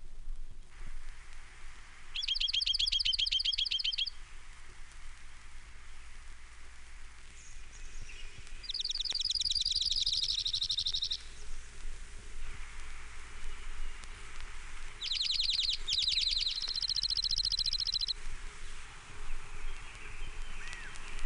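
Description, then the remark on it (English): Three bright, rapid trills from an Oregon Junco, each lasting a couple of seconds and spaced several seconds apart, ringing out over a steady low background hiss. “Oregon Junco, 9 examples.”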